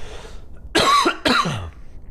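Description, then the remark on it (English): Someone clears their throat twice in quick succession, two harsh, rasping bursts, with no talking around them. “Let me clear my throat real quick.”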